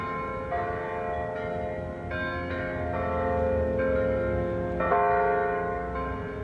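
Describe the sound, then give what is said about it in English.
The church bells of St. Andrews, a Benedictine monastery in the middle of the city, ring steadily, several tones overlapping in a continuous peal with new strikes every second or so, resonant, with no voices. “You can hear these different bird calls, the robins and the mourning doves, and then you hear these bells.”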